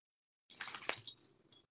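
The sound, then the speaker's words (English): A pet's collar tags jingle in a quick, rattling burst as the animal shakes its head, bright metallic clinks lasting about a second, fairly loud, with no one talking. “She was just shaking her head, so her collar was...”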